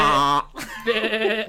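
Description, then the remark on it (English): A person imitates a goat's bleat in two wavering, nasal bursts, the first steady and loud, the second shakier after a brief pause, with no other sounds. “That's that like the worst goat sound I have ever heard.”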